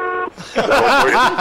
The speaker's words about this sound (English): Can we just get a honking of the horn as we let you go?